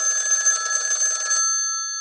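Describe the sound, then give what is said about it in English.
An old-fashioned telephone bell rings once, a loud, rapid metallic trill lasting just over a second, then its tones hum and fade out. No voices accompany it. “And at that point, literally a couple seconds later after feeling that way, the phone rang.”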